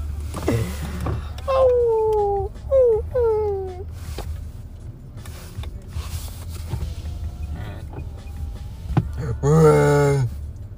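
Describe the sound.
A person howls like a dog to get someone to come out, in a series of short, sliding, descending wails, then pauses briefly before ending with a louder, deeper howl.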